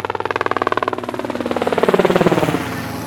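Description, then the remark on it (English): A helicopter's rotor thuds in a rapid, steady pulse, loud and close, the beat shifting and slowing slightly as it draws nearer and settles, with a droning engine whine underneath. “She's one of several celebs who own a helicopter, including James Cameron, the director, Harrison Ford, and Michael Bloomberg, the financier.”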